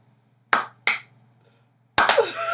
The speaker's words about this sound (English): Slow clap.